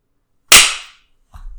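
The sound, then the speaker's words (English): One loud, sharp hand clap, made to mark the time for syncing a recording, rings out alone and fades within about half a second, followed shortly by a faint, low rustling thump. “Wait, when are we clapping?”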